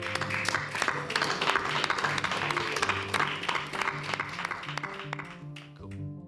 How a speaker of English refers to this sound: Give everyone a round of applause, please.